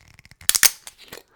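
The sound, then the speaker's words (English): A gold-and-black metal screw cap cracks open on a bottle of Irish whiskey: a run of faint, quick ticks, then two sharp, loud snapping cracks as the seal breaks, trailing off into soft scraping. “And the top is a metal screw cap.”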